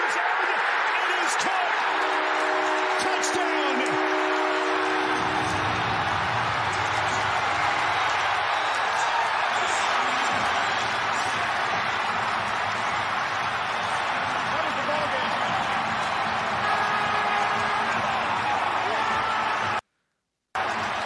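Football fans at Ford Field in Detroit roar during a play, a loud, steady wash of cheering and shouting that swells after the first few seconds, with a few brief tonal notes early on and a short cut-out near the end.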